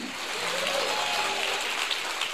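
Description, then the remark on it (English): An audience claps together as a hand clap of praise to the Lord, a dense, sustained burst of applause, a steady crackling wash of many hands with no voices standing out. “Now give the Lord a great hand clap of praise.”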